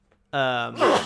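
A single sneeze: a short, loud voiced 'ah' intake that bursts into a sharp, breathy 'choo' at the end, after a brief quiet moment.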